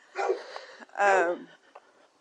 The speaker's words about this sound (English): And that's Lily Peach barking at us. Hey, Lily Peach!